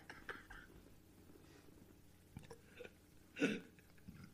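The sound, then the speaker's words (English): A small, short burp into a microphone sounds once, a brief throaty burst that stands out over faint mouth noises and soft breathy sounds. “I just burped just a little bit there.”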